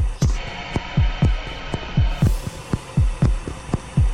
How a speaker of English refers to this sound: wild music here with a heartbeat motif.